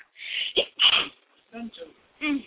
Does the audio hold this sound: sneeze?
yes